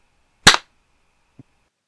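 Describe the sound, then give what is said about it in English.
A single sharp hand clap made to synchronise audio recordings, loud and crisp with a quick decay, followed by a brief faint low knock about a second later, otherwise silence. “Google Meet now filters out the sound of the clap, so I can no longer hear how we are in fact synchronised or not.”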